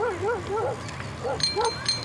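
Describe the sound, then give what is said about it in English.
Several dogs barking and yipping in short, overlapping bursts at a dog park, with some higher-pitched squeaky cries mixed in, like a lively group of dogs playing together. “it sounds like the doggy park.”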